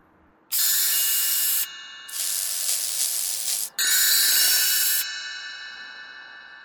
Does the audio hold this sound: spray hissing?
yes